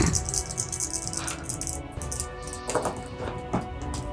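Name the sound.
dice being rolled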